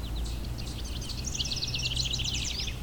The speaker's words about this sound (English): The house wren, like many wrens, are tiny brown birds with a big, energetic song.